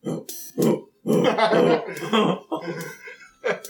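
A voice imitates a pit of hyenas growling: a run of rough, guttural grunts and snarls in uneven bursts, some short and choppy, others drawn out, fairly loud with brief pauses between.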